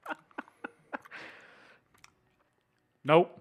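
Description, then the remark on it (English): Wet chewing of a yellow jelly bean with black speckles: four quick smacking clicks in a steady rhythm, a breathy rustle, then quiet before a short voiced hum at the end. “All right, I've got yellow with black speckles. I've had the two worst ones, I'm pretty sure.”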